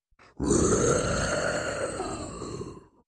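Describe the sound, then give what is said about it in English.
A single long, deep, rasping roar of a monster aboard the Marlowe rises after a brief low rumble, holding steady and loud for over two seconds with a growling, gravelly texture before cutting off. “How are we supposed to instill order if there's some sort of roaring monster aboard the Marlowe?”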